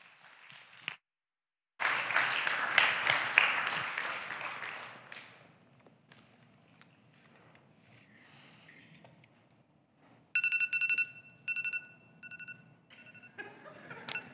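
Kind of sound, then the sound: household object, alarm clock ringing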